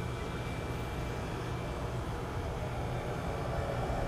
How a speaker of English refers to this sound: Alright, I'm gonna heat my coffee up, so ignore the microwave in the background.